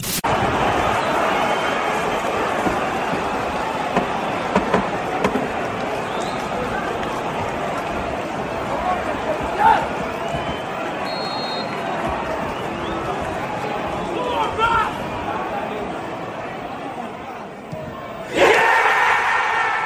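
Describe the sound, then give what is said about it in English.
A football crowd roars and shouts in a dense, unbroken wall of voices for the whole stretch, with occasional louder bursts of yelling rising above the steady din. “You'll hear some crowd noise, and then you'll soon realise what's happening.”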